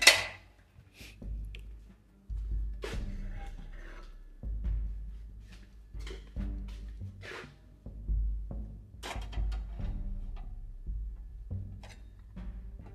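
Dishes clink and clatter in irregular bursts over a low, steady wash of running water, sharp knocks of plates and utensils scattered throughout with no talking.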